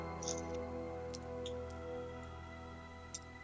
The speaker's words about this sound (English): There. Trying to get less of these clicking and clattering as you guys are playing with pieces.